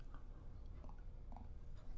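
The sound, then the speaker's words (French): Someone takes a quiet little sip of water, with soft wet mouth sounds and a swallow over a low background hum. Nobody speaks. “Mais pas avant d'avoir pris une petite gorgée d'eau, parce que la gorge a besoin, comme le reste, de lubrification occasionnelle.”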